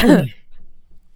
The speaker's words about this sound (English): That was my cough, a shimmy shimmy.